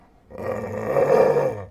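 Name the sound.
dog growling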